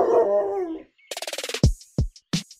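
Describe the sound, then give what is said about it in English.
A dog named Luna whines briefly, lets out a quick run of short yips, then gives three loud, sharp barks, with no talking. “But I'm sure the dog will like them.”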